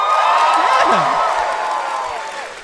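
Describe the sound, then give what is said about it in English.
A studio audience cheers and claps loudly, with whoops and shouts rising over dense, steady applause that fades slightly toward the end. “Like, they're too willing to clap.”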